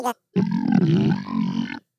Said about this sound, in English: Makes me go. Yeah, that's what that makes me do. Did you burp? Because I'm lactose intolerant.